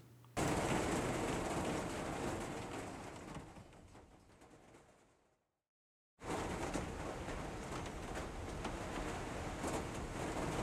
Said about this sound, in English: When there have been massive fires in an area, obviously the sound of pouring rain is an absolutely wonderful, wonderful thing.